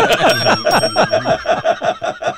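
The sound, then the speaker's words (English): A bell is dinged rapidly over and over in a quick, steady rhythm, loud, with bright metallic ringing throughout and no talking. “That bell? Ding that bell.”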